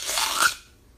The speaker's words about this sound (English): Crunchy apple.